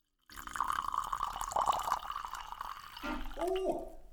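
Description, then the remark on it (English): Red wine pours from a screw-top bottle in a steady, splashy stream, fairly loud, ending in a couple of deep, hollow glugs as air gulps back in. “Oh, that was a good glug.”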